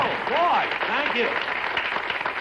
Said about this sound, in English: You can't fool me with all that applause.